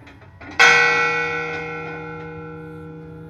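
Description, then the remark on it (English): A single loud strike of the fog bell on Angel Island in San Francisco Bay rings out, its bright metallic tone holding and slowly fading over a few seconds with no talking. “The first thing they would have heard of America would probably have been the fog bell ringing out across the famously foggy San Francisco Bay.”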